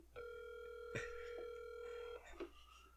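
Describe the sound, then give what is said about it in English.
A phone call to someone's mother ringing over a speakerphone: one steady electronic ring tone lasting about two seconds, clear, with a few soft clicks and rustles around it and no talking. “Are you actually calling Mom?”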